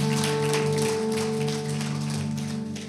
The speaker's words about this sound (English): That sounded like a 9:30 a.m. clap. I'm not gonna lie. It sounded like the first service, which was rough.